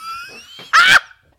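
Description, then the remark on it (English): A voice imitates someone's mother sneezing, with a wavering, sung-sounding vocal tone ending in 'a doobie doobie doo', a loud breathy burst, and then a short, sharp second burst after a pause. “She has to go a doobie doobie doo at the end of each of her sneezes.”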